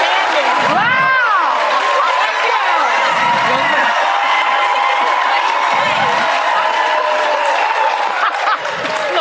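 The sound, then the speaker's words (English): A studio audience cheers loudly and steadily, with high rising whoops cutting through early on and a dense wash of shouting and clapping that holds for the whole stretch. “Reaction from the audience, by the way.”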